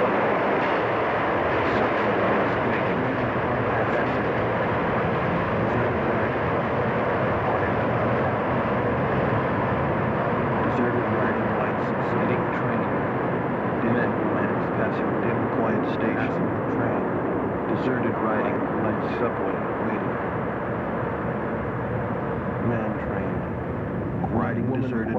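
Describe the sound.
A steady, loud rumble of a subway train in motion, heard from inside the car, droning continuously with faint metallic rattles and indistinct voices mixed in.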